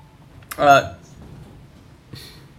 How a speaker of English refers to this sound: Please stop meowing. Apologies if you can hear the cat. She's trying to contribute and failing.